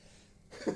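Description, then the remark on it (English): A single short sneeze bursts out abruptly after a moment of near silence, a quick breathy blast at modest volume, with no talking around it. “Bless you.”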